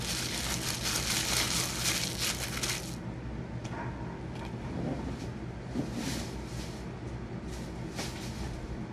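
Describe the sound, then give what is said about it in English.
Plastic wrapping crinkles and rustles as it is tugged and peeled off a canvas, with dense, hissy bursts of crackling that are loudest at first and then come in shorter scrapes. “I'm struggling because the canvas has a plastic... There we go. Over it.”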